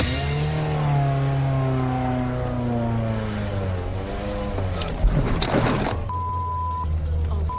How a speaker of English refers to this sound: So after profusely begging to drive a car after filming, Sarah got into the driver's seat of a Ferrari. Vroom, vroom, sports car.